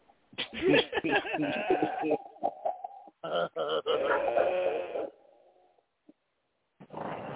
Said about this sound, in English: Shout out to Messiah barking in the background.